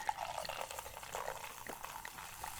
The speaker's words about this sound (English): Listen to the fizz. I know. Sounds so pretty. I do like a good fizz.